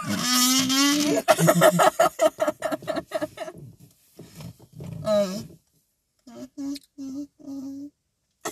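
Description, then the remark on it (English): Someone burps into a kazoo: a loud, buzzing kazoo blast with a low, gravelly burp-like growl, followed by a run of choppy buzzy notes and several short, evenly spaced kazoo toots near the end. “I just burped into my kazoo.”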